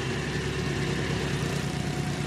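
A vacuum tanker truck's engine runs steadily as workers move spilled oil toward its vacuum hose in a canal near a levee, a constant droning rumble with a faint whine on top and no changes in pace or volume, with no voices.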